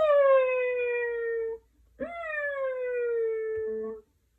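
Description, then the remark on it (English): A human voice imitates an elephant's trumpet with two long, loud, tonal blasts, each held about a second and a half, separated by a short pause, alone. “And get your big elephant trunk and go.”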